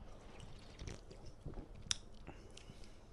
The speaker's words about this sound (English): But I mean, hard seltzer, alcoholic sparkling water. Yeah, but the alcohol, I don't know. What, it just says just vodka. Yeah, well, yeah, it is vodka. But, you want to give it a rating? I want to have a sip first. Give me a little.